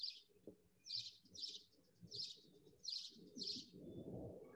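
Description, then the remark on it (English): Repeated bright bird chirps ring out in a steady rhythm, about six short calls, over a low murmur of other birds and soft rustling, moderately loud. “Yeah, the birds sound even louder now, don't they?”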